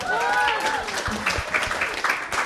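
A short round of applause from an audience, with scattered, uneven claps for a couple of seconds and some voices calling out at the start.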